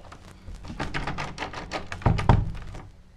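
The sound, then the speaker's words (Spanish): A rapid series of dull wooden thumps and knocks as someone yanks and rattles a stuck closet door that won't open, building to two heavier bangs near the end, with no talking. “Quiero poner la ratonera en el closet, pero la puerta no funciona, no abre.”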